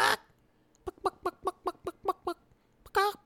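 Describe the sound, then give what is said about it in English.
A chicken clucks in a quick, steady run of about eight short clucks, then lets out a louder, drawn-out squawk at the end, with no talking. “I'm not really into dating just an actual chicken. I mean, I'm playing along for the show, but what's that, Miss Chicken?”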